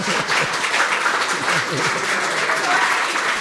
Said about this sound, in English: She earned her BA in economics here at UC Davis. You can applaud that.